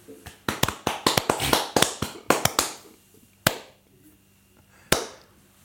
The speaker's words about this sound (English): There's always that awkward clap. Yeah. exactly.